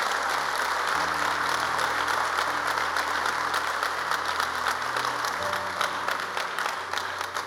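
A church audience breaks into sustained applause as a round of applause for God, dense steady clapping at an even loudness throughout, with low sustained organ or keyboard tones sounding beneath it.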